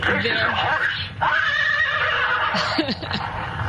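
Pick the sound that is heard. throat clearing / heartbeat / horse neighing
horse neighing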